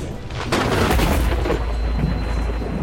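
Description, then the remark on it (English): A sudden, loud thunderclap cracks half a second in, then rolls on as a deep, sustained rumble that fills the rest of the moment with no voices. “As she's staring at you, just livid, she starts moving her hands towards one another and she reaches out and she brings them together in this, like, clap of thunder.”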